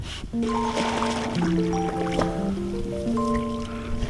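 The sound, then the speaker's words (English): A canoe gliding along a river, with soft, steady water swishes and drips from paddling, while sustained musical tones hum over the top. No one speaks. “I enjoy, instead of a night out on the town, a night out, like a Friday evening, nice relaxing way for me to spend that is to come down the river in the canoe.”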